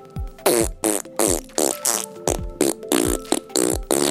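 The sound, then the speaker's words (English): A voice imitates a huge T-Rex fart: about eight loud, sputtering blasts in a steady rhythm, each a raspy, buzzing burst that drops in pitch, with brief gaps between. “This is how I think a T-Rex fart sound like.”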